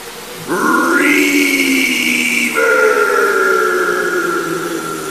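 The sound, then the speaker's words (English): A loud, sustained steam whistle with a slight upward swoop and a shift in pitch midway, trailing off into a long, washed-out reverberant tail. No one speaks. “I'll let you play with the reverb. Listen to all this reverb.”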